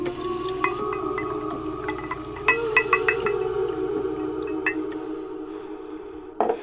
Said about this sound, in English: It surges and swirls, which crossfades into the close-up of a drink being poured.